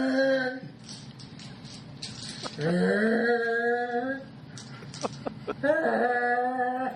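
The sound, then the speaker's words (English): A man howls into a plastic Solo cup, imitating the mating call of a skunk ape, in long, wavering, creature-like cries, muffled and resonant, with brief pauses and sharp clicks between the sustained calls. “He's howling into a solo cup.”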